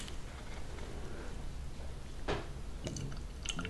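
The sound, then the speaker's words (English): A dark, reddish beer made with more than Pilsner malt pours into a glass with a steady, soft fizzing hiss, broken by a few brief splashy gurgles toward the end; fairly quiet, with no talking. “Okay, this one is pouring out darkly.”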